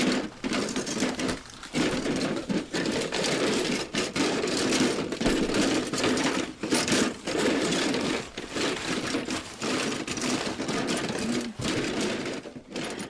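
Sustained, busy rustling of paper, a dense crackling hiss that runs for over ten seconds with brief momentary pauses, fairly loud and steady, with no one talking.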